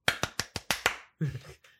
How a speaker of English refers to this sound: I think that was too many claps, but it was Friends. Is it four?